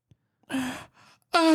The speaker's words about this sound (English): Oh, God. I had a little weird yawn thing that I had to get out of my body. That was weird. It's like a moan. Mm-hmm. It was like a weird moan.